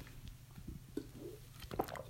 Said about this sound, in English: Let's see. I'm going to get a sip of water right now for my Red Robin red water bottle. 1 second, please.